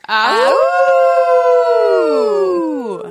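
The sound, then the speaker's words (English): People howl like wolves in one long, loud sustained cry that swoops up, holds steady and slowly slides back down over about three seconds, with no other talk. “We howled.”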